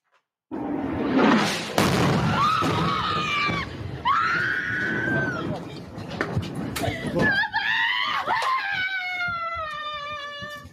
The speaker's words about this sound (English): Israeli citizens in the town of Ashkelon screaming in fear as missiles were hitting earlier this morning.